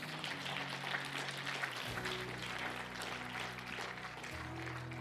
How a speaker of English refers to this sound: Give God a hand clap. Would you do that?